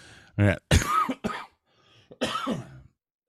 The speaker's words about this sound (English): Fuck, I haven't had a cigarette in like 2 days because I've been coughing my ass off.